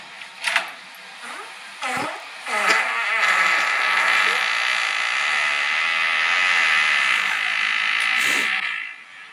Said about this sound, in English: That you showed me that one time and I was like, was that a fake fart? You know, that came out of my body.